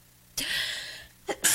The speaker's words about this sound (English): Bless you. Sneezed in her hair. That sneezed though.